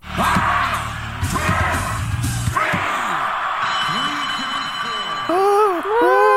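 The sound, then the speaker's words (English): A loud, packed wrestling crowd cheers and yells continuously, with sharp whoops and rising shouts piercing a dense roar of voices that swells again near the end. “We really should have tripled down that crowd noise, Julian.”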